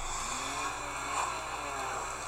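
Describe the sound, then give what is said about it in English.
A car engine revs steadily in a video game as the gas pedal is hit, its droning hum swelling slightly as it runs, with no voices over it. “So it has cool, like, rain sound effects and, like, sound effects for everything that you're doing. So hit the gas pedal.”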